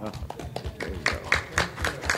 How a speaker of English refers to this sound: She stated that beyond a doubt, the work that you are doing on behalf of the blind is the most honorable job that can be done, and she wanted all of you in this room to give yourself an applause.